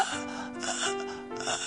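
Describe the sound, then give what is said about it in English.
A voice imitates the labored, gasping breaths of a dying man, a short strained inhale with a raspy, pitched rattle, fairly loud, lasting under two seconds. “He was dying. He was breathing.”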